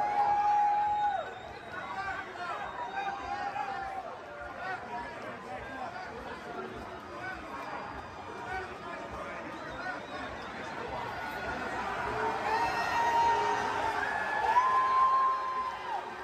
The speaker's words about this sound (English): So it sounds like he's getting booed, and then there's one chick right in the front who's screaming, woo, to cancel out the boos.